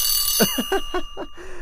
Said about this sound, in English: Your alarm clock always wins, man. You got the noise?